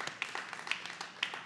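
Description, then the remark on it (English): A church audience in Murfreesboro, Tennessee, clapping together, a dense, steady patter of many hands with a few sharper claps standing out, sustained evenly throughout without any voices over it. “That is an appropriate place to clap, because Jesus is the hope of the world.”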